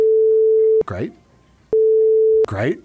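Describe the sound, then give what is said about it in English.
A loud, steady censor bleep cuts in twice over a phone number being given, each tone lasting under a second, with short bursts of a person speaking between and after them. “Make sure it's not a real number. Okay, I might have to bleep that.”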